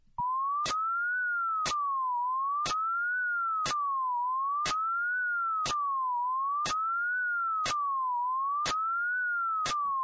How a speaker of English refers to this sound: Now I'm going to play another sound, the same slide whistle noise, but this time white noise, a bit of static, has been inserted into the gaps. And that's all it is, just static. Here's the sound.